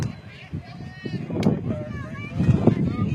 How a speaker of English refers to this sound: As you can hear that wind picking up. Yeah, we're right around 20 mile an hour gusts, I bet.